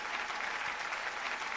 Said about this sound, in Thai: ขอเสียบปรบมือธุรกิจแอมเวย์ด้วยค่ะ